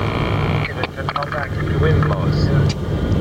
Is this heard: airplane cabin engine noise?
yes